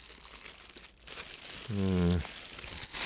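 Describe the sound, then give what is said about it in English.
Steady crinkling of the plastic bag wrapping a bun rustles throughout, with a brief voiced hum or murmur rising over it near the middle. “I need to remind myself to tell the staff not to put every single dumb bun into every single plastic bag.”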